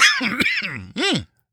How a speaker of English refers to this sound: There it is. There it goes. There it is. The cough attack. It comes and goes.